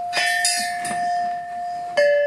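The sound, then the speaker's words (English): Heavy red pipes made of a very heavy grade of steel are struck several times, each hit ringing out with bright, sustained bell-like tones that linger and overlap; a final strike near the end rings loudly. “these here are red pipes. They're made of steel. They're very heavy, very heavy grade of steel.”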